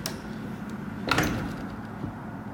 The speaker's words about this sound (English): Okay. Okay, open the door.